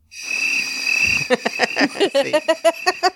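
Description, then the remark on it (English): A voice imitates a record scratch ("wiki wiki scratch"), played from a sound-effect button: a sustained, nasal hiss-like tone, then a quick run of about ten choppy, pitch-sliding vocal bursts in a jerky rhythm, fairly loud and alone. “I was doing the record scratch. Wiki wiki scratch, you know.”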